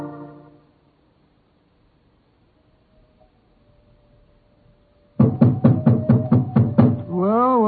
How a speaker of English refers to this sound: This was the elephant house. Why in thunder doesn't the keeper open the door? I imagine because his mind is preoccupied with music. Knock again, old fellow, will you?